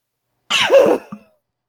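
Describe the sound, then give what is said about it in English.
One sudden, forceful sneeze into an elbow bursts out with a breathy, rising voiced edge, followed a moment later by a short, softer catch of breath. No one speaks. “No, I did blow my nose, or I did sneeze into my elbow, but I did not dab.”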